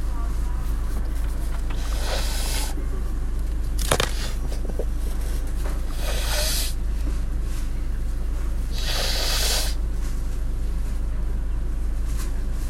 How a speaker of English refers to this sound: Blowing your nose at the front of class is so embarrassing.